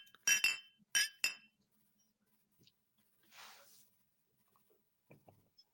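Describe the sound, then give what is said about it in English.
Three bright glass clinks ring out in quick succession, a toast sound effect, followed by a brief soft hiss and a few faint ticks in an otherwise quiet background. “Porque es que Johnny Boy sent you uno con extra reverb y no sé cuántos clink clinks like están en el audio, dude.”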